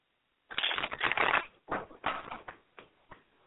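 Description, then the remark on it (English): Shuffling of a deck of tarot cards: one long papery riffle, then several shorter bursts of cards slapping and sliding together, tapering off quietly with no voices. “Just shuffle the cards and we will see what comes out.”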